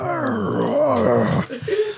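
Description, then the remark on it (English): A person voices a drawn-out, wavering growl, mimicking a giant spider; the loud, moaning rumble lasts over a second, then breaks into a shorter, rougher grunt. “It kind of growls and looks at you very intently, and then it looks at the other spider and goes...”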